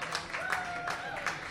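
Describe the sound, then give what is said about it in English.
An audience of quiz teams claps steadily as the current scores are read out, a dense, even patter of many hands at moderate volume, with a few faint voices or tones threaded through the applause. “Clap, clap, clap.”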